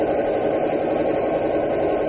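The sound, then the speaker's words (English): The engine of a stopped car idles steadily with a low, even rumble and faint vibration, holding a constant level throughout with no voices. “The car has stopped.”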